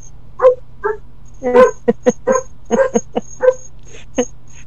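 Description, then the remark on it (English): A poodle named Lenny whimpers and lets out a quick series of high, sharp yips, about a dozen short bursts in irregular rhythm, fairly loud over a low steady hum. “He's the most airheaded dog I think I've ever met. Is he an NPC? He's a poodle.”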